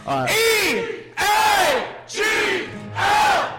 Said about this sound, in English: Let's get one more for the people in the back. Another Eagles chant to lead into this beautiful music.